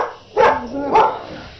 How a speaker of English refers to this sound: Voices outside. The local town dog greets us. Exactly. Yeah, the dogs bark as you ride into the town.